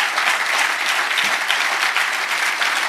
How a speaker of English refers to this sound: Like, that stuff, give them a round of applause right now. That stuff is ridiculous.